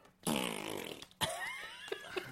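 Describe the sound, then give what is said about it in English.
A voice imitates a gassy antelope: a loud, buzzy raspberry lasting under a second, then a wavering, whinny-like squeal broken by a couple of short puffs. “What does a gassy antelope even sound like?”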